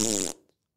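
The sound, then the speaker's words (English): A single loud, buzzy fart lasts about a third of a second, then cuts off abruptly, followed by brief faint noise and silence. “I bet 6 or 7 times a day you farted.”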